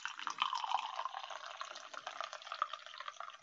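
Coffee pours steadily into a cup from a new gizmo in one long, continuous stream, a bright splashing trickle that runs unbroken for a few seconds with no voices.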